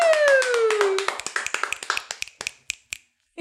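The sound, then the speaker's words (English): Several people clap in a quick, uneven burst that thins out and fades over a few seconds, with a falling whistle-like tone sliding down under the first second. “You guys clapped too loud.”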